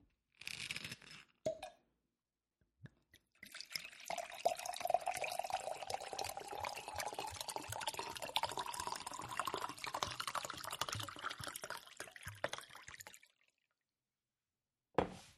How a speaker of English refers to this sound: pour me some wine.